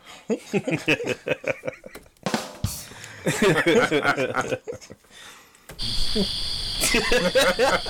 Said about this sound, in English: And you get a cricket snap.